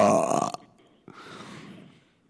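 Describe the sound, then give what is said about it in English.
A loud burp after eating a few pieces of candy, with a throaty, voiced rumble, then a brief pause and a second, softer and breathier belch that fades out. No one speaks. “That was a candy burp.”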